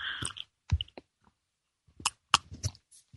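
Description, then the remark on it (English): Quiet sipping of tea: a few short slurps and mouth clicks, then a pause of about a second before another cluster of soft sips and a swallow. No one speaks. “Time for me to sip a little tea here.”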